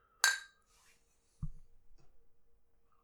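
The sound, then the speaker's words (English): A single bright clink of glasses of strong 10.9% alcohol beer touching in a toast, ringing briefly, followed about a second later by a duller low knock, like a glass set down. “Yeah, cheers. Cheers.”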